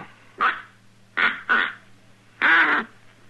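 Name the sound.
duck call being blown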